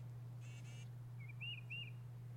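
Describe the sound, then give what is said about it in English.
A recording of a short, buzzy bird call followed by a longer phrase of clear, rising whistles, like a brief song, faint over a steady low electrical hum. “It's like the short thing, they'll usually call the bird's call, and the longer one is like the bird's song.”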